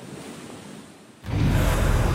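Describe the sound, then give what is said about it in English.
A steady roar of howling typhoon winds and rushing surf at night on Guam, with things breaking, that suddenly surges louder about halfway through, filling the whole recording with dense, blustery noise. No voices are heard. “You can hear the sounds. The winds are howling. Things are breaking.”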